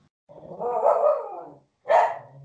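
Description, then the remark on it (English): A female puppy barks twice, a long drawn-out yappy bark followed after a short pause by a sharper second one, loud with no talking over it. “She's a puppy. She thinks she's a guard dog.”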